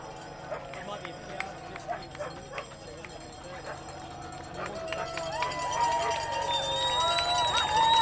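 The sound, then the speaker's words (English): Spectators at the roadside of a cycle race ring bells that clang and jangle repeatedly amid a noisy cheering crowd, the ringing growing louder and more continuous toward the end. “You can hear the bells going.”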